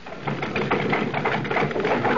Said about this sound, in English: Oh, bless my soul, the omnibus. And stopping before my shop door.